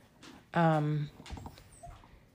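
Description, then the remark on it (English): A small dog yapping at a person lets out one loud, drawn-out yap, followed by softer, indistinct background noise and faint voice-like sounds. “I am not glad that this dog is yapping at me.”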